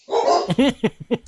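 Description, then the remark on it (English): Dogs bark at home in a quick burst as an upstairs neighbor gets a food delivery: a drawn-out opening yelp followed by several sharp, rhythmic barks in rapid succession, loud and with no talking. “Sorry, we got dogs.”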